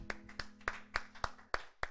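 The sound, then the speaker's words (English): An audience at Freedom Church of the Palm Beaches claps together in a steady, even rhythm, about seven sharp unified claps in under two seconds, with a low sustained hum underneath and no talking. “If we're clapping, I have a feeling God's sitting on his throne, pretty happy himself, you know?”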